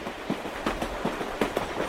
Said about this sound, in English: Not long after our train left Pittsburgh, the novices wept, devastated by the disbanding of our community there.